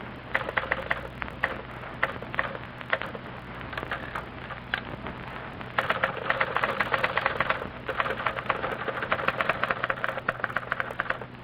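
Two typists each type a letter on typewriters, clattering with quick mechanical key strikes over a low steady hum: the very slow typist's sparser stretch, then a much denser, faster run of clicks from the second typist, three times as fast.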